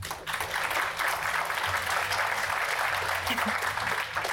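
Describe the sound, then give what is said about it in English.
An audience at a panel discussion claps steadily for about four seconds, a dense, even wash of many hands that stays at a constant level, with faint murmuring voices underneath. “I'll let the applause get out of the way because I know I won't get any.”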